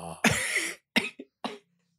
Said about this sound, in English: I've got a lingering cough, and anytime I laugh too hard, I just wheeze.